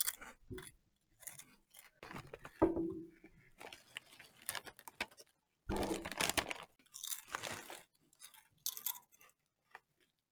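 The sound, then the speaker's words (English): Someone bites into a crisp, unwashed red apple and chews it: irregular bursts of wet, crackly crunching, with one loud bite partway through, then more chewing with short pauses and no talking. “That's a good apple.”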